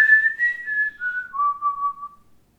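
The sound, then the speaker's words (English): A person whistles a short tune alone, a few clear sustained notes that step gradually downward in pitch before trailing off, fairly steady in loudness. “It doesn't help that occasionally … will whistle a”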